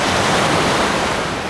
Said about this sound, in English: Big waves. Finally, some waves on Koh Samui. Radical.